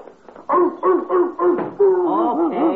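A dog gives a quick series of five or six loud barks and yelps, the last few rising and falling into whiny, yippy cries, with no one talking.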